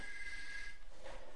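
A faint telephone ring sounds once as a steady, high electronic tone lasting under a second before cutting off, leaving quiet room noise and no voices.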